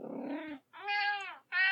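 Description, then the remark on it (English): A cat named Kipper complains: a low, rough growl rises into a long, drawn-out meow, then another loud meow begins right after a short pause. No one speaks. “So, Kipper, is there a common myth about cats that you want to debunk right here, right now?”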